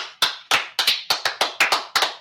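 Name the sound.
applause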